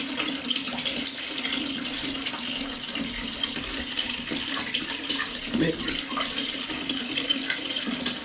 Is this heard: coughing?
no